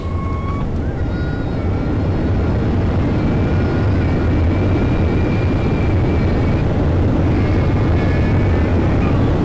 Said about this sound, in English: As the plane landed in Quito, my stomach did somersaults. I wasn't sure if it was because of nerves or because of the turbulence.